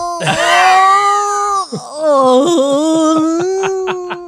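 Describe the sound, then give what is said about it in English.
A voice imitates labor-pain howling: one long, loud, sustained wail with strong harmonics, briefly breaking and dipping before resuming as a lower, pulsing moan that trembles toward the end. “Oh, just howling like a wounded animal.”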